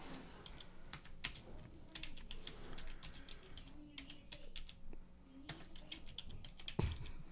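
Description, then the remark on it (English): Rapid clicking of keys on a computer keyboard, irregular bursts of typing with short pauses, over a low background hum and faint murmurs. “I can't even see what I'm typing.”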